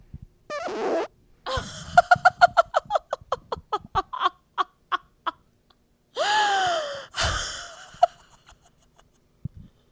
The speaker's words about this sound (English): So, I have to tell you guys, wait, I'm going to fart. Let's see if I can capture my fart. Hold on.